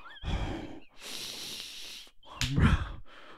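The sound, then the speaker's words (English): Heavy, wheezing breaths rasp loudly right against the microphone, a few long noisy inhales and exhales with a thin whistling tone running through them, no talking. “I'm not breathing into the microphone like that. I need a sleep apnea mask.”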